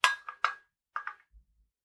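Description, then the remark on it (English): A metal tea strainer holding tea leaves is put into a ceramic cup, clinking against it in three bright taps in quick succession, then two softer ones, followed by a low dull thud as it settles. “And then the strainer goes into the cup.”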